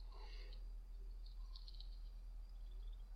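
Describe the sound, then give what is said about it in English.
Soft, high-pitched bird chirps flutter in short bursts over a steady low rumble in a fantasy film soundtrack as a woman plays with the birds, quiet, with no one speaking. “Oh, she loves playing with the fucking birds.”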